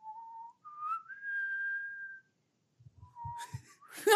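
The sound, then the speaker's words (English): A slow, solemn whistled rendition of the Taps bugle call: a few sustained tones rising in steps, a pause with some soft thumps, then another held note ending in breathy noise. “I was hoping you had like a trumpet or a cornet on you. Just a whistle.”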